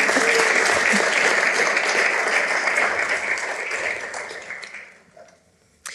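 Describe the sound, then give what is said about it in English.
A crowd applauds steadily, a dense wash of many hands clapping that holds loud for several seconds, then tapers off and fades out near the end. “Do you want to give him a wee clap?”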